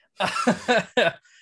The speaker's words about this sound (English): sorry, I have to cough one sec.